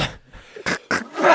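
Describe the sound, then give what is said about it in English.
Two quick, explosive sneezes in a row, sharp bursts of breathy noise, with softer snuffling and vocal sounds before and after. “Bless you, …!”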